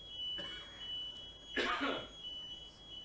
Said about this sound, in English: So there's an alarm system in here that has motion detectors. I think we must have been laughing a little too hard or something, and they're kind of like, someone's broken into the building!